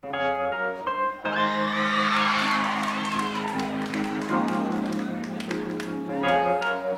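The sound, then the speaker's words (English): A live concert crowd cheering loudly, with whoops, screams and clapping swelling over a sustained musical chord, the roar staying strong for several seconds before easing as the music continues. “Yeah, that's a supportive crowd.”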